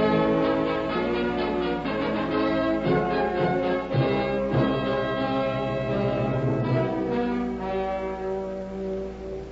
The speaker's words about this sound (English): Try the doorbell again